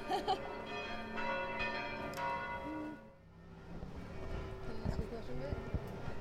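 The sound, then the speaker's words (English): Church bells in Rome ring out at noon with overlapping, resonant strikes for a few seconds, then fade as voices and outdoor bustle take over, with faint clip-clopping hooves in the mix. “So, want to talk about these bells? Is it noon? A thousand bells at noon, as they say.”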